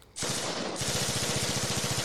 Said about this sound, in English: I think we'd hear some gunshots pretty soon.